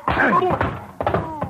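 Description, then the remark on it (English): Blunt thwacks of a punch to the jaw landing, two or three quick hits within a second or so, mixed with strained grunts from the people fighting. “And that squares the top of that clip on the chops you gave me.”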